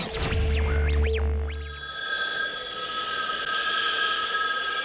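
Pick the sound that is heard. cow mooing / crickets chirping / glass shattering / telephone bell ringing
telephone bell ringing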